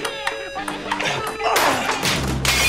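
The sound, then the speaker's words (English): A lamp is knocked over partway through during a game of table tennis, making a loud clattering crash that rattles on for about a second over steady background music. “He knocks over a lamp.”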